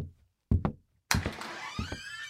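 A couple of heavy wooden thunks, then doors swing open and a wash of busy room noise and murmuring voices of gathered delegates rushes in and continues.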